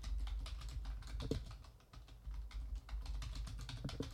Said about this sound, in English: Good typing sounds.